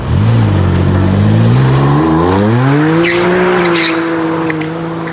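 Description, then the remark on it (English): A powerful BMW sports car engine revs up, its pitch climbing steadily through the gears and then holding at a high, loud drone, with no talking. “This is a Beamer.”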